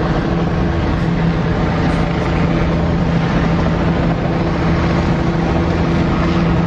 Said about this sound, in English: Must be an electrical fire because the smoke is getting thicker and thicker as the fire truck stand here. More and more helicopters.